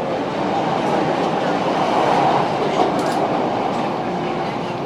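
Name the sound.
train departing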